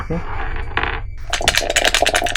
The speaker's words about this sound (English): Will you just roll two dice for me? D6. D6.